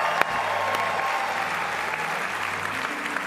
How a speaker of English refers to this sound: Come on, give them a better clap than that.